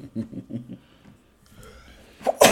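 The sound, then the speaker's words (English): A single sharp, loud sneeze bursts out at the very end, after a brief murmured voice and a quiet stretch with a faint hiss. “Bless you.”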